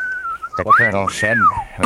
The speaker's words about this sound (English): They're dropping whistles on us again, Sarge.